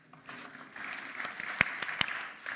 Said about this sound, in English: happily give you a clap as well.